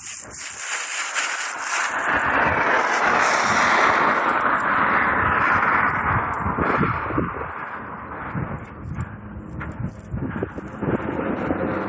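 A plastic wrapper crinkles loudly and almost continuously, a dense rustle broken by sharp crackling snaps that ease slightly near the end, with no voices.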